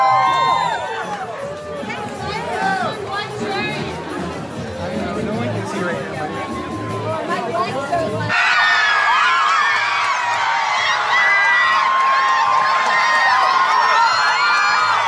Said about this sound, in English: That's Barack Obama leaving a restaurant, people. And these people are all cheering and are going crazy for the guy.